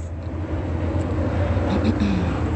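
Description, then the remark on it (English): A Southwest Airlines jet airliner roars overhead in a steady, continuous wash of low rumble and broad engine noise, fairly loud, with no break through the whole stretch. “And that is Southwest Airlines.”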